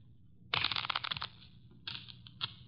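A deck of playing cards is riffle-shuffled in a quick, crisp fluttering burst, followed by two shorter, softer riffles. No voices are heard.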